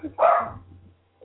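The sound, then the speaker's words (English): A single sharp, high-pitched bark from a small dog, loud, ringing out briefly before trailing off into a faint background murmur. “It's only an ankle biter. Why so loud? Small dog syndrome.”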